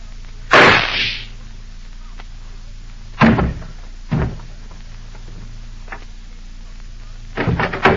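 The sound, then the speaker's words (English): A single loud, sharp gunshot from a small flat-handled gun strapped alongside a man's chest under his coat cracks out near the start with a short ringing tail, followed later by several dull thumps and knocks against a quiet, low hum. “I heard a shot.”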